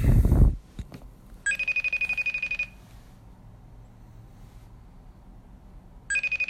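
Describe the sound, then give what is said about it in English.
A phone ringback tone sounds as an outgoing call rings, one long pulsing ring, a pause of silence, then the next ring starting, fairly clear over a quiet background after a brief thump at the start. “Watch him not answer now.”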